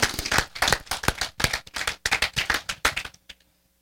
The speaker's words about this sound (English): First, I want to thank the worship team. That was awesome. If you guys give them a round of applause, yeah. Please.